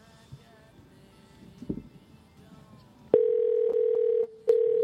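Faint room noise gives way to a loud, steady electronic phone ringing tone. It holds for about a second, breaks briefly, then starts again.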